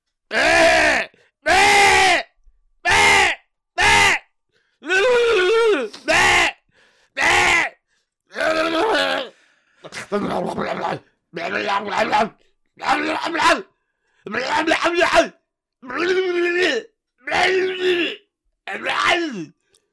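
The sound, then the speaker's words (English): A person imitates a frenzied sheep, letting out a long run of loud, strained bleats and groaning cries, about fifteen bursts in a choppy, uneven rhythm with brief gaps between them. “Imitate a rabid sheep.”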